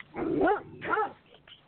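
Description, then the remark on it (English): Two sharp barks from a neighbor's dog in quick succession, moderately loud, with a brief pause between them and a faint trailing sound afterward. No one speaks. “Okay, whose dog? Mine. Actually, my neighbor's dog.”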